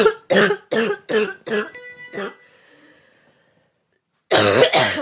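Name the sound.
coughing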